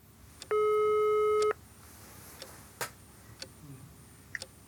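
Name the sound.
telephone ringing tone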